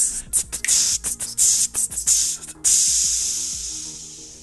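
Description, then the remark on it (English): A voice imitates snake jazz with rhythmic hissing: a string of choppy, stuttering hiss bursts, then one long sustained hiss that slowly fades, with faint low humming tones underneath. “And you can listen to snake jazz.”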